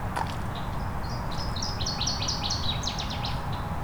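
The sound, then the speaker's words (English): A northern waterthrush sings a loud, ringing series of sharp chirps that speed up and tumble downward, heard outdoors against a steady low rumble of background noise. “I'm going to move the direction of that water thrush just slightly.”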